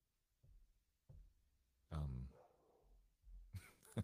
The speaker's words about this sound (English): And my dogs are in the background.